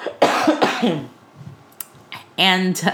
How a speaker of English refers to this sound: And sorry, I'm going to cough.